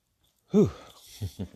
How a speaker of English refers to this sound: Whew. Y'all like really breathing heavily a little bit. Yeah, that comes from doing all throughout the night while I was trying to freestyle rap off my radio show.